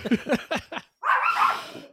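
A dog lets out a quick run of four or five sharp barks, pauses briefly, then gives a longer, drawn-out howling bark. No one speaks.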